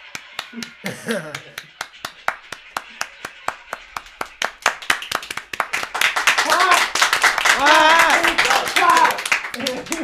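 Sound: soundboard clapping sound effect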